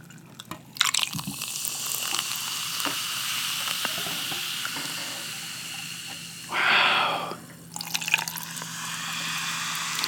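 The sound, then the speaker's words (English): A steady fizzing hiss runs throughout, broken by a short burst of liquid pouring into a container, its tone rising as it fills, then the fizz continues with a few small clinks. “Okay, now you pour it in.”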